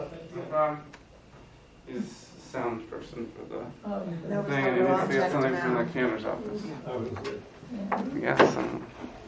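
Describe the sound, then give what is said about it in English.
A door is opened with a few short wooden clunks and rattles, moderately loud, mixed in with continuous talking from a person. “Should I open this door here?”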